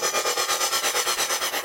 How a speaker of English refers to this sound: So this loud fucking room is the engine room, and nobody belongs in here except for the engineers